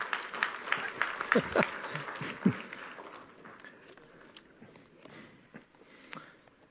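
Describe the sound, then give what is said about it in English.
Sparse, scattered claps from a church audience after the music team led the singing, a few sharp hand slaps in the first seconds fading into quieter shuffling and murmuring, with no sustained applause. “Yeah, one clap.”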